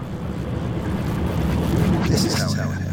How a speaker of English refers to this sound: We float now on an inky black sea.